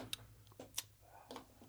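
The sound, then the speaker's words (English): A ticking clock used as a timer during a word-guessing game, its sharp clicks coming at a steady, quick rhythm, moderately loud over a low background hum. “we need a clock.”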